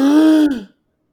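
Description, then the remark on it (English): A single loud, dramatic gasp, a sharp voiced intake with a sustained tone lasting about half a second before it trails off into silence. No one speaks. “New state constitutions are drawn up and are now even giving former slaves, gasp, the right to vote.”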